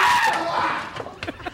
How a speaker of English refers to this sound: Suddenly, there's a horrible scream from outside the door.